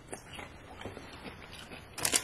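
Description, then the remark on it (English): Someone chews a spicy fried snack from the dollar store in a series of soft, irregular crackly crunches, ending with a sharper, louder burst of crunching. No voices are heard. “I mean, the crunch.”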